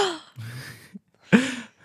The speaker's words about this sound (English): The figures perk up. They twist their necks around and gasp.